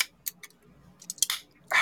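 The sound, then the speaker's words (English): A South Beach flavor Raise energy drink can is cracked open: a few sharp metallic clicks from the tab, then a bright burst of carbonated hiss at the end. No one speaks. “So I'm going to go ahead and crack this open real quick.”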